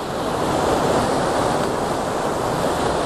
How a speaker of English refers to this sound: If I get down here, I can get nice and low, very close to this waterfall. And being close to waterfalls is good, really good. Lots of detail.